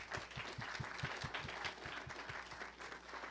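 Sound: audience applause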